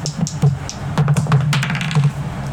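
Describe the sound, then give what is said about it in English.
Dice clatter and tumble as they roll off the tray, a quick irregular run of sharp plastic clicks and taps lasting a couple of seconds over a low steady hum, with no one talking. “Runaway dice. That's a 16.”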